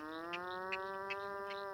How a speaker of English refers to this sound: Give up? It's the nutria, an introduced aquatic rodent that looks like a large muskrat. Nutria are from South America and were brought to Louisiana to be raised for their fur.